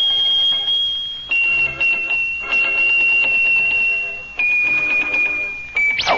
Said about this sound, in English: Look at that. Oh, how he shakes those bells.